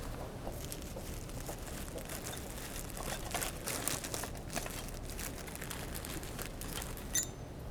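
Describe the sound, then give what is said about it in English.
Someone rummages through a mudlark's bag holding tools, a digging device and wet wipes to get out a token, with continuous crinkling and rustling of material and small clicks and knocks as items shift about, no speech. “And my one is, shall I get it out? Yeah, go on. Yeah, it's in my bag.”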